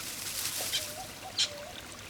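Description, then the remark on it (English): A couple of short, sharp, high-pitched calls of an Australian king parrot ring out over the steady wash of a flowing creek, the second call louder than the first. “It is an Australian king parrot.”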